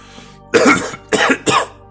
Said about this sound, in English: you see Bart hack up a ton of blood onto the concrete in front of him before it's washed away quickly by the pouring rain.